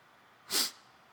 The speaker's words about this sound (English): Don't mind my sniff.